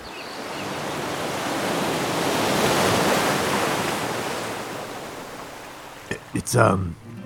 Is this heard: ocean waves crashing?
yes